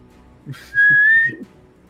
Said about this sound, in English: As you whistle and turn around, you can see Mango frozen in place in the air, a little bit above you after dropping you off, just frozen in time.